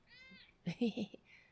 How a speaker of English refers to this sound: Yay. Tara Jr. Jr., everybody. Sit down now. Be good. Ladies and gentlemen, the cat. The cat is in the house. How you doing, Junior? Good? Okay, good. He said good.